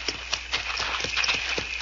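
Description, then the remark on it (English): Horses' hooves clip-clop in an irregular, unhurried rhythm as the animals are led out of sight, the steady knocks moderately loud with no voices over them. “Let's get these horses out of sight.”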